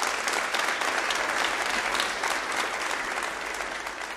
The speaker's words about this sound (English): Give him a hand.